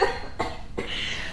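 Three quick, harsh coughs in close succession, loud, with a breathy rasp trailing after the last one and no talking.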